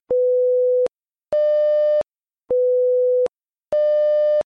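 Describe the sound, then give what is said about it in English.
An AMRON app alert tone for a regional or local event alternates between a pure low beep and a brighter, buzzier beep, each under a second long, repeating twice in a steady two-note pattern, loud and clear with no voices. “And we also have a banner that will say regional/local to let you know that this is a regionalized or local event that might not affect everyone, but we will put in the alert who is affected by that.”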